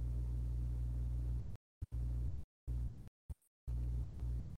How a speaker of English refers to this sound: Maybe it's, you got like a fan or like an engine on next to you. It's a transformer. It sounds like that. Holy shit. More like an air conditioner, like you're standing next to one.